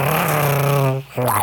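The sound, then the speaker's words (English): A voice imitates the roar of a reptile-like creature, likened to a dinosaur mixed with a transformer: a sustained low, harmonic growl that sounds almost mechanical and engine-like, followed by a brief pause and a shorter rising growl. “It sounded like a dinosaur mixed with like a transformer.”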